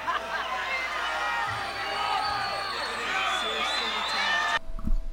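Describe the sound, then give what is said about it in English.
A concert crowd's dense, steady roar of many overlapping voices and shouts, holding at a constant loudness before cutting off abruptly, followed by a brief low thump. “You can hear some of the crowd.”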